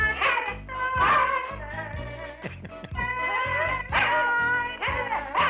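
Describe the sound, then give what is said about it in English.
A dog, held right up to a telephone, howls in long, wavering, sustained tones through a thin telephone line, singing along without pause for several seconds, fairly loud, with no one talking. “Hold the dog right up to the phone. Come here, baby. Come on, Pokey. Sing Murphy a song.”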